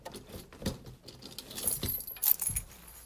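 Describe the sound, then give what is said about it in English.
Metal jangling and clinking as a leash is clipped onto a dog before a walk, a few irregular bright rattles with soft handling thuds, loudest near the end, no voices. “Let's put your leash on.”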